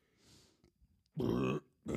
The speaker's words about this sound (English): God. That was awesome. Yeah. Oh, see, what the fuck? Burp. Oh. Fucking turn the light. My shoulder. The fucking force from your burp. Well, on my shoulders.